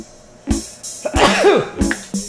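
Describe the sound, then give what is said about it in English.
A run of sharp, explosive sneezes, several bursts in quick succession with a longer, voiced wheezy stretch in the middle, fairly loud and with no talking. “Sorry. Bless you.”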